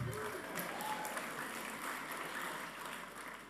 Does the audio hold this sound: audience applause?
yes